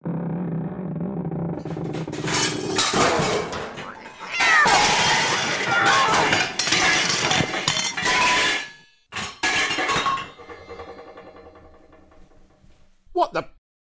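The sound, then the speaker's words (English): A kitchen cooker hood collapses in a loud, drawn-out crash after something had been cleaning itself on it for a few seconds: several seconds of banging metal, clattering and clinking debris, then quieter rattles, with a brief meow-like cry right at the end. “I can't have been cleaning myself on it for more than 5 seconds and it just completely collapsed.”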